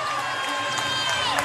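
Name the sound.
basketball crowd cheering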